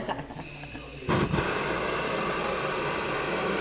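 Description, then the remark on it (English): A propane-oxygen torch, burning at about 1,025 degrees, is lit at home for glasswork. It catches about a second in with a sudden whoosh, then settles into a loud, steady, hissing roar that holds without a break to the end. “So I'm going to light the torch now, so it may be a little bit noisy.”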